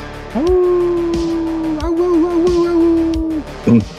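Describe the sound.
A person lets out a long, steady wolf-like Halloween howl lasting about three seconds, held at one pitch with a slight waver, loud, ending with a short yelp.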